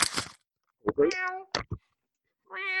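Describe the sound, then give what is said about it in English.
A cat meows twice, a drawn-out mew followed after a pause by a second one starting, fairly clear, with a brief hiss of noise and a few soft clicks in between. “It might cover some cats.”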